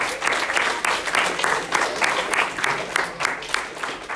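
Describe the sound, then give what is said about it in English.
A crowd claps steadily for about four seconds, a dense, even patter of many hands with sharp individual claps popping through, no voices rising above it. “Everyone clap.”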